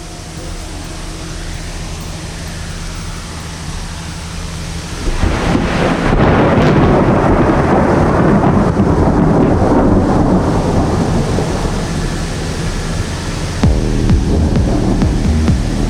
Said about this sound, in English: As I said, like new thunderstorms getting born here. This is silly almost.